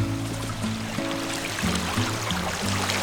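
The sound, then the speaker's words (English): Waterfalls trickle and cascade down the cliffs of Fern Canyon in Humboldt County, California, in a steady, continuous wash of water, with low sustained musical tones shifting underneath throughout. “With these waterfalls cascading down the cliffs.”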